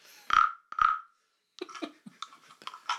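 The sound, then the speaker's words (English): A small tree frog gives two loud, harsh, buzzy calls, then a quick run of shorter croaks and clicking chirps of varying pitch. No voices are heard. “And it involves this here little tree frog that we have. It makes this sound.”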